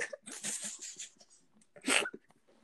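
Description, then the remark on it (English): Breathy, halting inhales build up, then a single sharp, explosive sneeze bursts out near the end, followed by quiet. “There's a sneeze coming.”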